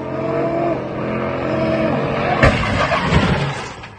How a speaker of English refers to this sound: In a video posted on social media, an exhibition driver doing donuts in the middle of John Rogers Drive in East Birmingham crashes into a crowd of onlookers.